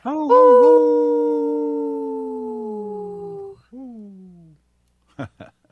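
A wolf lets out one long, loud howl that slowly slides downward, then a shorter falling howl, followed by a couple of brief sharp sounds after a pause.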